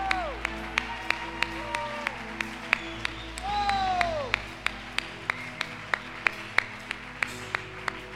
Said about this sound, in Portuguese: Receba essa chave nas tuas mãos e aplauda o nome do Senhor que vive. Aplauda e adore.